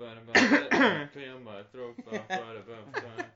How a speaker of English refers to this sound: I got to clear my throat. And how do you link it? How do I link it? Link my throat clearing to this thing.